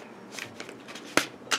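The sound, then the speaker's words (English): Tarot cards being shuffled, a papery riffle with soft rustles building into two sharp, crisp slaps near the end, fairly quiet overall with no one talking. “These cards are popping out. Let me shuffle them.”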